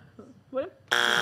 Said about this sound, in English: You don't need the buzzer.